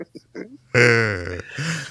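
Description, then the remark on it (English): A loud, drawn-out burp with a low, rumbling, buzzy tone lasts over half a second, preceded by a few soft, short vocal sounds and followed by a brief, quieter voiced noise. “But you're just trying to top my burp now”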